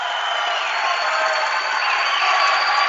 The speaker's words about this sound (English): Dordt within 4 points as the crowd comes alive in front of a full house here at the DeWitt Gymnasium here in the Sioux Center.